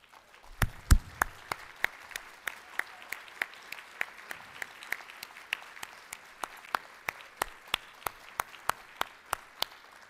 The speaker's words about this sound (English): please stand for a round of applause.